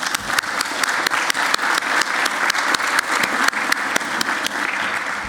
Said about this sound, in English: And women, oh, I'm not going to leave out the women, and I want you to give them a round of applause.